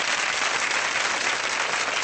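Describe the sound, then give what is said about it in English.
A studio audience applause sound effect played from a sound effects library: a dense, steady wash of many hands clapping at once, crackly and hissy, holding an even loudness for about two seconds with no voices. “Oh, that sounds like popcorn popping or frying.”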